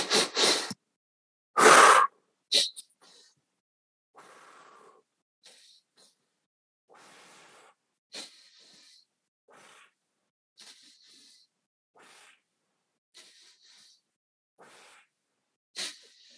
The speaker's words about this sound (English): And then I'll count 3, 2, 1, and then we'll start our breathing. Okay. So 3, 2, 1.